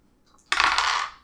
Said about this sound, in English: Roll me a dino. A dino. Roll three dice.